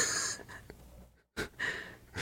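A coughing fit from someone smoking a joint: harsh, raspy hacking bursts with wheezy gasps in between, a brief break, then more coughing, fairly loud and with no talking.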